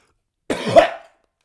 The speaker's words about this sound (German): Kennt ihr das, wenn ihr hustet? Und dann euer Halstäpfchen da hinten so pumpt und dann habt ihr so Würgereflex während dem Husten, vom Husten, dann hustet ihr mehr, habt ihr mehr Würgereflex.